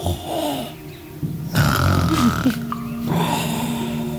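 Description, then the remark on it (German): Deep, rough snoring of a giant, poisonous-green lizard the size of a horse and shaped like a monitor lizard, lying curled up in a rock passage, with a low, gravelly rattle, growing louder in the middle and continuing steadily with a drawn-out rumbling tone. No one speaks. “Und dann hört ihr plötzlich so ein tiefes Schnarchen sein.”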